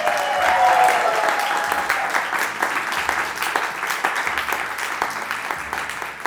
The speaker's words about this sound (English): It's been an amazing and fascinating conversation, and we have a big round of applause from our audience, please.